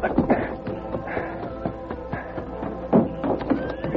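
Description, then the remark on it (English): Hooves clip-clop in a steady rhythm as a man rides his horse toward a ranch at night, over a dense, muffled background, with a brief horse whinny rising near the end. “Then he hurried out the back door, got his horse, and headed for the ranch.”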